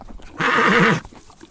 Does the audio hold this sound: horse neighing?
yes